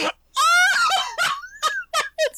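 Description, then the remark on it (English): A camel's roar, used as a fake lion roar: a long, strained, moaning bellow rising and wavering in pitch, followed by several shorter groaning bursts. It is loud, with no talking. “The that roar was actually, of the majestic camel.”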